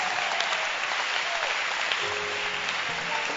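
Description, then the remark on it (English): A crowd claps steadily and densely for a few seconds, a broad wash of overlapping hand claps with faint voices and a low tonal hum mixed in underneath. “Clap your hands.”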